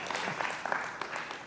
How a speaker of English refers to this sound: If you're happy and know it, clap your hands.